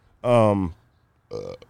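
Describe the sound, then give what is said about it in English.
A single loud sneeze: a drawn-out voiced intake followed after a brief pause by a sharp, breathy burst. “Bless you.”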